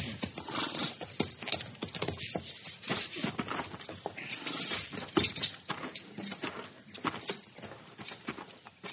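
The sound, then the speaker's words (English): Horses' hooves clip-clop steadily on hard ground as riders arrive at a house, a busy, irregular patter of fairly loud hoofbeats from more than one animal, with no voices over them. “Let's leave the horses here.”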